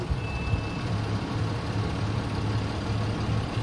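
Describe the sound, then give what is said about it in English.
A heavy truck engine rumbles steadily as the truck pulls up to a scale, a low idling drone with a faint high tone briefly sounding, no voices present. “And that's one of our trucks pulling up to the scale right there.”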